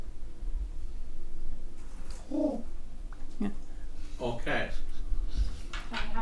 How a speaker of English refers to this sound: Can I have a good berry? Can I have a good berry? Yeah. God, he must be so full now. He's a pigeon.